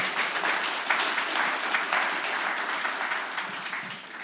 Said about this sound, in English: Yeah, you can applaud to that.